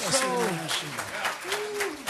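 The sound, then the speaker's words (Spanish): A crowd claps steadily in a sustained burst of applause while a man's voice speaks or chants loudly and prominently over it, at a worship service blessing the Holy Name. “Put your hands together and bless the Holy Name. Pon tus manos. Levántale un aplauso a él.”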